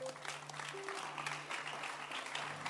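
A church audience claps their hands for a woman after a prayer of deliverance, in a sustained, dense burst of applause, steady and fairly loud throughout, with a faint low hum underneath.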